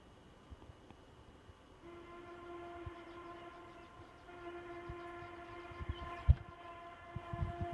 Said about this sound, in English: No, right there, it sounds kind of like a train horn. That sounds a lot more mechanical.